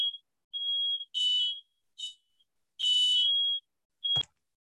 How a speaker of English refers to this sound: First of all, sorry about that, y'all. I guess they having random alarm test checks or something in here. I don't know, because I was sitting here thinking like, what the hell going on here? But sorry about that, y'all.